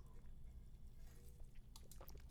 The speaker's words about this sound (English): I'm gonna take a sip of water here.